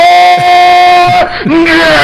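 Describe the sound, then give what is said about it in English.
A person loudly imitates a chicken squawking: one strained, nasal cry held for about two seconds, cracking sharply in pitch a couple of times, with no other sounds. “And then you have, you know, something like a chicken, which I know is probably more intelligent than I think it is.”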